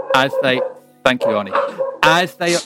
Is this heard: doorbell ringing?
no